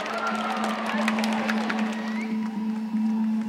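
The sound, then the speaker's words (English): A crowd applauds the athletes at Just Believe in a steady, dense wash of clapping with scattered cheers, holding an even loudness throughout, over a constant low hum. “So a great big round of applause to all of our athletes today here at Just Believe.”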